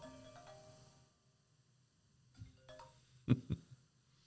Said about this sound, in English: Phone rings, so I thought that was on silent.